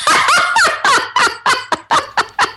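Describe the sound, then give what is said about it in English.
A voice loudly imitates a clothes dryer buzzer: a string of about nine harsh, rapid, warbling bursts in a steady rhythm, with no other talking. “And then my laundry will be drying, and the dryer will buzz loud, and I will shit myself.”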